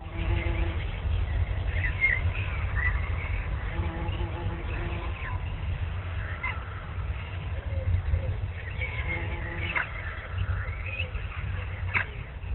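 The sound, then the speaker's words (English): Faint birds chirp intermittently over a steady, muffled low rumble, with a few brief tweets standing out near the end of the lo-fi recording. “I hear birds chirping.”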